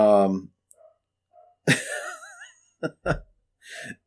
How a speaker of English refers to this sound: The dogs are... Dogs are going apeshit upstairs.